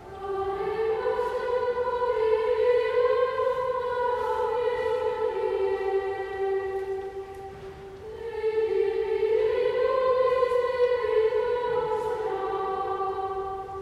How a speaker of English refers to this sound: And of course, the most breathtaking of all, the Escolania Boys Choir.